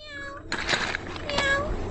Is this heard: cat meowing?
yes